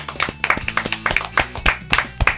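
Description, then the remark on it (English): A quick run of sharp hand claps, about a dozen in just over two seconds, falling in a steady rhythm over a low sustained tonal hum, with no talking. “Let's clap it out.”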